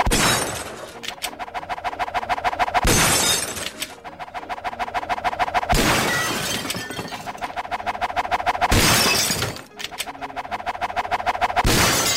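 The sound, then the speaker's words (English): A series of loud, bright shattering crashes as smaller dessert plates are shot and break during round six of a shooting game, arriving every few seconds over a steady rhythmic buzzing backdrop of game-like music, with no talking. “All right, let's challenge you a little and give you some smaller dessert plates. Now we're going to shoot dessert plates.”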